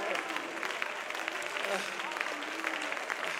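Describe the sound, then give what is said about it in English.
An audience clapping their hands unto the Lord during worship, a dense, steady wash of applause that stays at an even, moderate loudness throughout, with no voices standing out. “Clap your hands unto the Lord. Clap your hands.”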